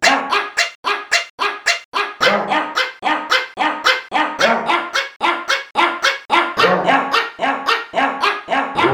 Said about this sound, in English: Beautifully sung by the dogs there.